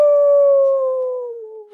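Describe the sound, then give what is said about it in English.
A person imitates a wolf howl: one loud, sustained wail that slowly slides lower in pitch and fades slightly at the end, with no other sounds. “Were-rats don't make a wolf sound. All were-creatures howl.”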